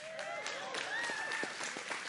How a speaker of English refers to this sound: Yes, clap. Yeah, go for it. Clap for me.